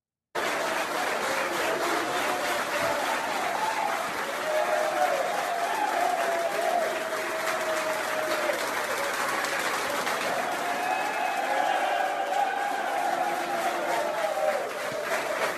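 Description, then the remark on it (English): A large football stadium crowd cheers and roars continuously as Donald Trump goes through the crowd, a dense wash of voices with scattered applause and rising, wavering shouts, a USA chant, loud and sustained throughout with a few mixed jeers. “I hear some negative, but for the most part, it sounds very positive.”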